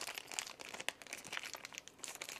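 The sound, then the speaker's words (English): Continuous crinkling of a plastic bag being worked open to get a small talisman out, with sharp little crackles and snaps scattered through a steady rustle, no voices. “Except now I can't get their little talisman out of this plastic bag.”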